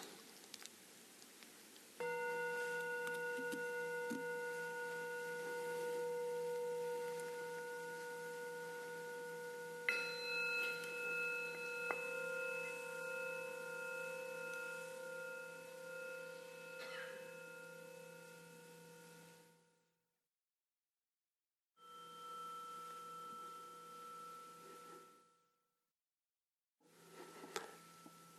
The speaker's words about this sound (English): And there are the sound of the bells.